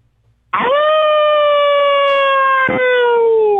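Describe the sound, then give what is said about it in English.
A person at work in a shop imitates a howl with one long, loud, sustained note that starts abruptly and slowly sinks in pitch, with no other voices around it. “That's a great howl.”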